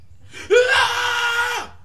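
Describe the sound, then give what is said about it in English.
A single sustained, high-pitched scream in a wrestling entrance theme cuts in abruptly and holds steady for about a second before trailing off, loud over a low rumbling backing. “I love this theme music. That when that shit started screaming in the middle, I was like, that shit is fucking crunk.”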